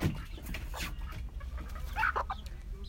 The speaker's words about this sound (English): And right now I'm putting my hens to sleep with their babies. Come here, baby. Come here, mama. Come here, mama.